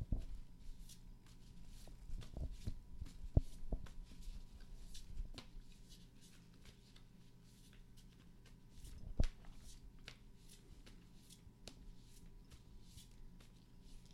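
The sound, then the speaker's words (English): A deck of cards being shuffled, with continuous papery riffling and flicking over about fourteen seconds, punctuated by a couple of sharper taps. No one speaks. “So I'm gonna shuffle these cards while you enjoy the banana bread, and you just tell me when I should stop shuffling.”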